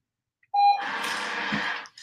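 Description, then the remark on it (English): A single short, high electronic beep from a dog training collar, followed right after by about a second of steady hissing, rustling noise. “And you can turn the beep off. You can make it louder. You can make it quieter.”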